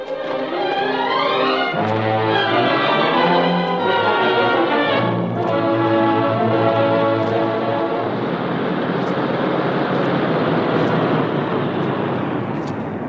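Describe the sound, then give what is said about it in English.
A car drives along with a steady engine drone and road noise, first beneath loud sustained musical tones, then continuing alone as a constant rushing rumble, arriving at a cemetery to park near a mausoleum. No one speaks. “Here we are, Parker. We'll leave the car here.”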